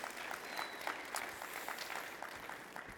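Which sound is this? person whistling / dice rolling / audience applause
audience applause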